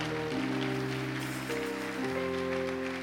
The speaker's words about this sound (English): If you are clapping, you can clap well.